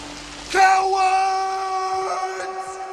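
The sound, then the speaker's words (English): A person imitates a long, anguished movie-style scream, Brendan Fraser screaming at the window in School Ties, loud, bursting in after a moment of quiet and held as one sustained wail for a couple of seconds. “Brendan Fraser screaming at the window.”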